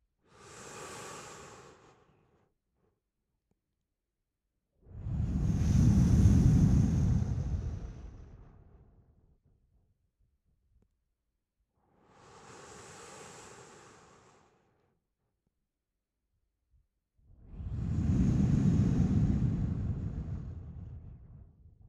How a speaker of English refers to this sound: And Ujjayi breath, what you're doing is you're making the breath audible, so that the breath sounds a little bit like this.